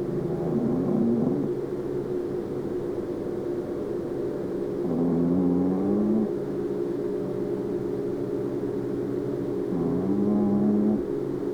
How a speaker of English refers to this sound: luckily I did make a recording earlier of her snoring, so I will put that here for you.